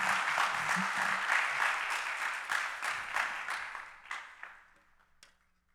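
A church audience applauding, giving a hand to the Lord as Pastor Matt is welcomed to preach: steady, dense clapping from many hands that holds strong for about four seconds, then thins out into a few scattered claps before fading to quiet.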